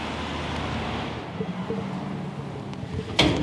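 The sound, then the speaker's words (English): Steady roar of busy traffic on State Highway 1 through Dunedin fills the background early in the morning, then the staff side door of Toitū Otago Settlers Museum shuts with a sharp clunk near the end. “coming in from the staff side door, outside which runs the busy State Highway 1 through Dunedin City.”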